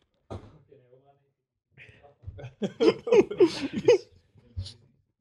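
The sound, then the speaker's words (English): A person belches after drinking fizzy soda: a series of short, guttural belches, a few separate croaks followed by a louder run of rough voiced gulps, with quiet breathy noises between them. “I apologise to producer Paul and to all of our listeners for my belching there.”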